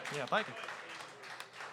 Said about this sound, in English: Y'all give him a round of applause, y'all. Y'all can do better than that. Come on, give him a hand. There we go.